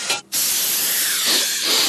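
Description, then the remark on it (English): An aerosol air freshener sprays in two bursts: a short hiss, a brief pause, then a long steady spray lasting well over a second, loud with no one talking. “Say, it's a bit stuffy in here. And I know a certain someone who really fancies lilac.”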